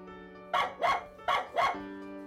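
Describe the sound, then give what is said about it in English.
A female puppy named Sparky barks four times in two quick pairs, sharp, over a steady humming tonal background with no one speaking. “They're dog bones. Our little friend has been collecting them”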